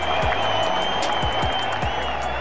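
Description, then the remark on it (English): A loud crowd cheers and applauds continuously, dense clapping blended with whoops and shouts, a steady roar of an excited audience with no pauses. “And the crowd goes wild.”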